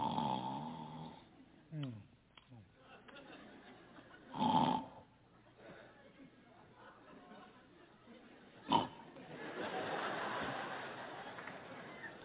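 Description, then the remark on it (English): A voice imitates a wife's loud snoring: rasping, nasal breaths build into a couple of sharp, pig-like snorts, forceful, with quieter wheezing between them. “My wife snores so bad. You ever sleep with someone that wakes their own self up?”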